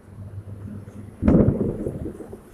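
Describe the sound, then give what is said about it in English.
A sudden loud crack of thunder breaks over a low background hum, then rolls into a deep, sustained, heavy rumble that slowly fades as rain is about to start, with no voices. “Well, it was like thunder.”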